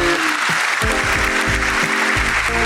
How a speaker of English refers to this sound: And the crowd goes wild. Yes.